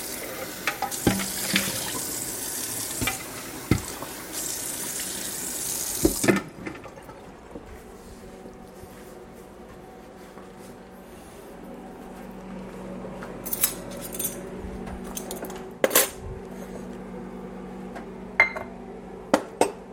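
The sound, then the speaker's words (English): A kitchen tap runs with a broad hiss for about six seconds, then shuts off, followed by quieter clinks and knocks of metal dry measuring cups, made by William Sonoma, being rinsed and handled in a sink. “Now, cleaning the dry measuring cups now.”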